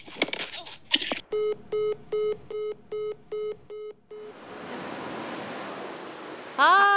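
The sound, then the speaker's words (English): Ocean waves wash ashore in a steady, hissing rush for a couple of seconds, following a string of eight evenly spaced electronic beeps, with a brief voice-like sound at the very end. “It's so beautiful, and the water today is coming.”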